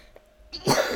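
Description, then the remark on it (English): A brief silence gives way to a single harsh cough, a loud raspy burst in the second half with a sharp catch at the very end. “I'm going to cough a lot, so if you hear coughing.”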